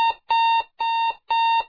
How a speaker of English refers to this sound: These are the top five worst noises on Earth. Number two, an electric alarm clock. But not just any alarm clock.